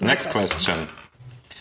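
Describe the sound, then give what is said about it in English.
An in-ear headphone falls out and drops, landing with a few quick, light clattering clicks like a small plastic object bouncing on a hard surface, with a murmuring voice around it. “No, my headphones, like my one of my in-ear headphones, like, every fell podcast, out of my ear.”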